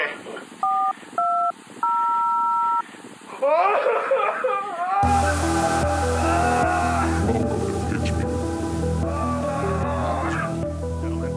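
A few quick telephone keypad dialing beeps, then a longer held tone, clear and close, followed by giggling voices and a louder, busier wash of sound.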